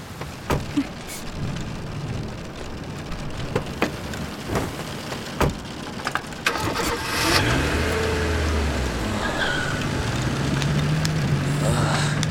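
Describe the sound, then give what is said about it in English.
Steady rain from a storm hisses throughout with a few sharp knocks, then a car engine roars up partway through and keeps revving loudly as the car speeds away from the side of a road. “Get in the car and shut up.”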